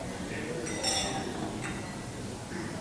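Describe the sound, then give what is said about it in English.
Beer glasses clink together in a toast: one bright, ringing clink followed shortly by a softer tap, set against low room noise and faint background voices. “A big beer, but it's pretty smooth. Yeah, cheers.”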